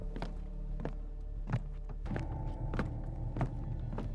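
Heavy footsteps like old-fashioned hobnail boots thud across a hard floor of an empty attic room, about seven solid steps at a slow, uneven pace, with a low hum underneath and no voices.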